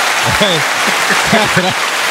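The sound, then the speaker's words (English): Steady hands clapping in applause, a dense crackle lasting a couple of seconds, with voices whooping and exclaiming over it. “That, first of all, clap. Clap that out.”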